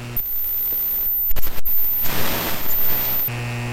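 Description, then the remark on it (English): Crackling static with a steady electrical hum from a Russian-made radio for electromagnetic radiation, picking up frequencies from a lamp, a TV, a computer and a phone; sharp clicks and pops around the middle, then a louder hissing burst before the hum returns. No one speaks. “And this is a radio for electromagnetic radiation.”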